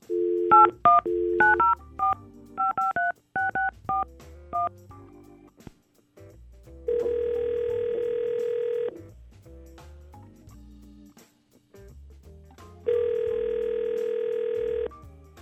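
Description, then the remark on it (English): A quick burst of telephone dialing tones, rapid beeps of varying pitch, followed by two long, steady ringing tones with a pause between them, clear with no voices, as radio hosts place a call to a woman. “Let's try to call her.”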